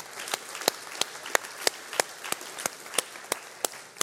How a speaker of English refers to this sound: Well, like I said, happy Father's Day. Can we do this? Can we just take a moment and give our dad, the dads in the room, a round of applause?